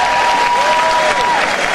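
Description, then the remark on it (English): A burst of applause from the MSNBC table, steady dense clapping mixed with some cheering, loud and sustained for a couple of seconds with no speech over it. “That's the MSNBC table cheering for their ratings.”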